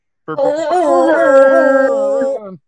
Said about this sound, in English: And, of course, today's episode presented by Illegal Pete's, another air horn. Go for it.